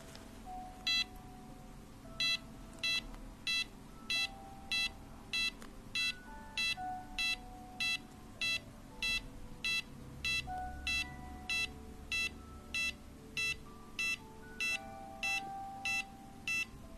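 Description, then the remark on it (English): A heart monitor beeps steadily with a patient's heartbeat during a medical test, sharp high-pitched electronic tones repeating at a quick, even pace throughout, with faint electronic hums and tones running softly underneath and no voices. “There's just going to be some beeping sounds, okay?”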